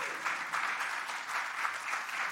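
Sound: applause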